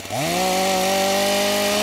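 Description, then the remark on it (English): A chainsaw revs up sharply and then holds a loud, steady high-pitched whine, its engine drone buzzing continuously with no voices. “And hopefully I'll be able to get a chainsaw sound effect.”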